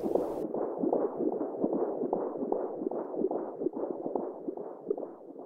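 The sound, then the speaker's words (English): A fetal heartbeat on an ultrasound monitor during an early scan in a second pregnancy: rapid, steady whooshing pulses, roughly two or three per second, loud, with a muffled, watery texture and no voices. “As in, you know, went for all of the early scans. There was a beautifully strong heartbeat.”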